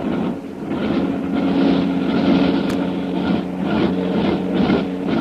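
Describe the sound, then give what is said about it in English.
A steady, droning roar of the engines of Karnak's airplane overhead, with a throbbing hum that stays loud and constant throughout and no voices. “Listen to those motors.”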